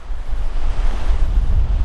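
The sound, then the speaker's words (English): A steady wash of surf on a beach, with waves rumbling and hissing continuously, mixed with heavy wind buffeting the microphone. No one speaks. “But this beach is fantastic. Truly fantastic.”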